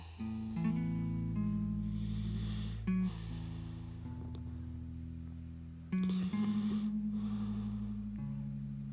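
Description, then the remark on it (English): A 3-year-old boy breathing slowly and steadily while lying down, close by, each breath carrying a soft nasal, snore-like tone over several even cycles with no talking. “just listening to the sound of his breathing and wanting to share it with you.”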